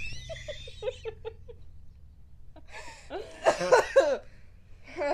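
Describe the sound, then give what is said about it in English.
A string of harsh, breathy coughing bursts, fairly loud, clustered over about a second and a half, with a quieter lead-in and another burst starting at the end, from a person at a house on Halloween. “stop coughing.”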